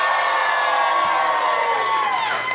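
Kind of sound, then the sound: crowd, audience applause and cheering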